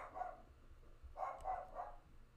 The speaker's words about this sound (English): Can you hear my dog barking?